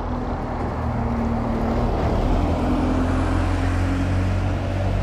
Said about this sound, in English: So get London buses going past when I'm at this end of the bike track.